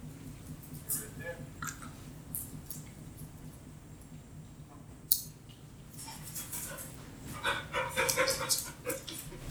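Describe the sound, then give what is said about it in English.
Dogs panting, a run of quick, breathy huffs that grows louder and busier toward the end, over a steady low background hum. “Can we pause real quick? Yeah, I get the dogs.”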